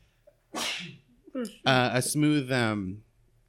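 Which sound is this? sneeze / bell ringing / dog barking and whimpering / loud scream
sneeze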